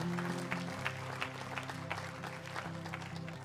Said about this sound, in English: Let's give those who responded a clap. Fantastic.